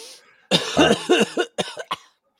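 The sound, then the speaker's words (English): A person coughs: a long, harsh, rasping cough followed by three short, sharp coughs in quick succession, then silence. “You got to hit the cough button when you do that because you don't want to infect anybody.”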